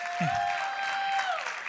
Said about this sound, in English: Oh, can we get a round of applause?